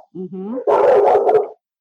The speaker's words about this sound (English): Oh, see, these are my dogs barking at each other. One is inside, and one is outside.